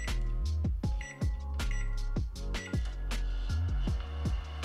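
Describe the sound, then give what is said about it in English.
A microwave oven sound effect plays from a toy button: a steady electronic hum layered with a rapid series of sharp, evenly spaced beeps and clicks, fairly loud, with no talking. “Oh, they got a microwave button.”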